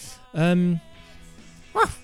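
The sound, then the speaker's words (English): A person imitates a dog barking with two loud vocal bursts: a longer drawn-out woof followed by a short, sharp yap after a brief pause. “That's a good dog one.”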